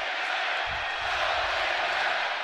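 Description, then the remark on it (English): A packed basketball arena crowd of Nebraska Huskers fans roars in a dense, sustained wash of voices, loud and steady throughout, chanting "Go Big Red" during a game against Purdue. “And you hear the Go Big Red chant.”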